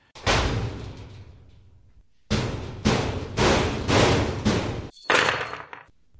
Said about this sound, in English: Close the cabinet door